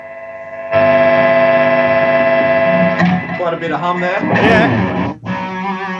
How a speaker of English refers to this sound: Bit of hum there.